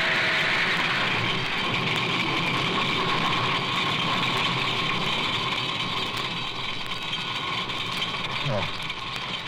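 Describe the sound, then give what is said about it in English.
A car engine starts and runs with a loud, steady rumble for the whole stretch, a constant drone with a brief rising-and-falling whine near the end. “The starter worked at last.”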